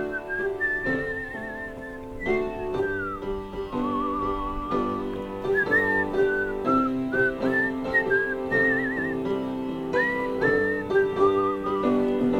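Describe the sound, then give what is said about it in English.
Someone whistles a lilting melody with warbling vibrato, clear, over steady instrumental accompaniment, the tune rising and falling in short phrases across the whole passage. “I was always impressed with your whistling.”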